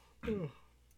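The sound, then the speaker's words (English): A single short, breathy yawn from one person, its voiced tone sliding downward and fading within a fraction of a second, followed by quiet. “Oh, sorry, I'm just yawning at how boring your fucking, your trolling is.”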